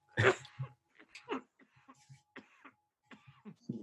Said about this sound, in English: Elbow coughing. Yeah. Like that's a good cough even when no one's around.